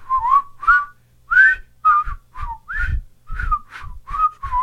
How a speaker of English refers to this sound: Well, we need to work at synchronizing our whistling. Yeah, ready? Ready? 1, 2, 3.